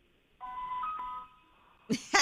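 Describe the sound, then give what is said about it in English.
A single steady electronic ringing tone from a phone call to a friend, made to leave him a voice message, sounds for just under a second, moderately loud and slightly thin, followed by a pause and then a couple of short, harsh bursts of noise. “Call back and let me leave a voice message for him. I'm going to try.”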